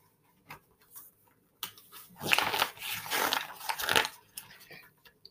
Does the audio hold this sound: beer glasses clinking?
no